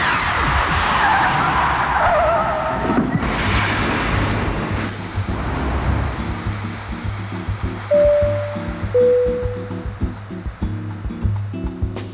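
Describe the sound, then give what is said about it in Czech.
A DeLorean time machine car skids and roars off with a loud tire screech, then a sharp high hiss takes over and brief electronic beeps and pulsing tones close out the sequence, with no voices. “Nastavujeme náš DeLorean a uslyšíme se za 10 let.”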